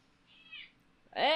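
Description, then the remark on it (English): Two pet cats, Booty and Junior, yowling at each other in a scuffle: a thin, faint meow first, then a sudden loud, harsh yowl. “What's up these cats' asses, man?”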